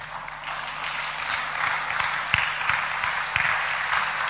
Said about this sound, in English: Stand to your feet. Clap your hands.